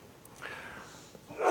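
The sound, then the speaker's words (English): A single short sneeze bursts out at the end after a few quiet seconds during a Bible reading from Ephesians chapter 2, a sharp, breathy, snort-like blast with no talking around it. “Bless you.”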